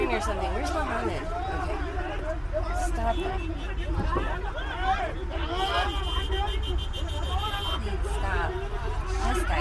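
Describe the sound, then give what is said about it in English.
A jumble of men's voices talking and shouting over one another as a group of about seven men fight outside a car in a foreign country, a continuous overlapping clamor with a low vehicle rumble running underneath throughout. “And it finishes the second part of this, this is a short clip, is the melee of all these men outside of their car.”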